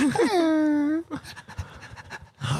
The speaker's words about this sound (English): Oh, it's a little puppy.